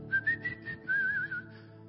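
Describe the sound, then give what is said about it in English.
A person whistles an imitation of the birds in the tree over a picnic table at Cutler School, a thin high melody of short chirping notes followed by a longer warbling phrase that wavers in pitch, heard alone without speech. “And I was sitting there, and on the tree that was over that picnic table were birds, and they were doing their thing.”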